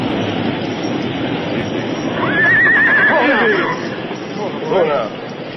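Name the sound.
horse neighing and whinnying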